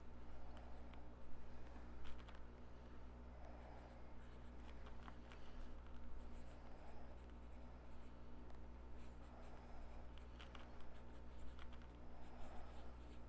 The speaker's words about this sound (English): You might want to write it down on a blank piece of paper or something.